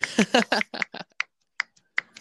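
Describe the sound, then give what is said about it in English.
A run of crisp finger snaps given in place of clapping after a reading, quick and clustered at first, then slowing to a few single sharp snaps spaced apart, with silence between them and no voices. “Giving you snaps, those my finger snaps.”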